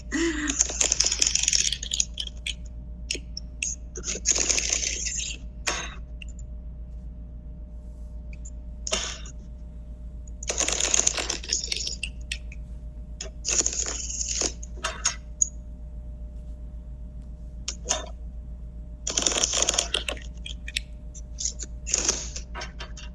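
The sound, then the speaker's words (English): A deck of tarot cards being shuffled in several separate bursts of papery riffling and flicking, with brief quiet pauses between them and a low steady hum underneath. No one speaks. “I'm going to shuffle and then we will start.”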